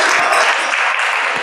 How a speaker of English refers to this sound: So a big applause to him.